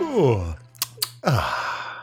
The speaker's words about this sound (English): I don't know if you can see me, but I'm just twisting my wrists around right now in what is a theatrical yawn, because this is a very sleepy episode of Regular Features.